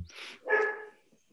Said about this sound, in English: You hear the bark of his dog from by the house.